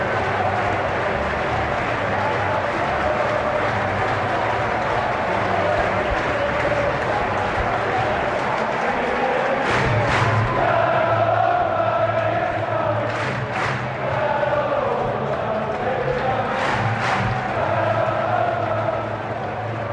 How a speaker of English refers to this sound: Quarter past six here on the last Sunday of the Premier League season, and I'm overlooking both a crowd of Crystal Palace fans leaving Selhurst Park after the team has beaten United 1-0 and the stadium.